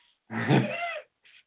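A dog lets out one drawn-out bark, followed a moment later by a much fainter, shorter yelp, with quiet in between and no talking; the dogs are barking at a squirrel in the tree outside a window.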